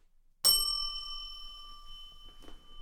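A single bright bell strike rings out after a moment of quiet, its clear metallic tone sustaining and slowly fading, with a faint brief rustle near the end.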